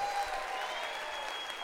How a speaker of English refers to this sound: Would you clap your hands right now?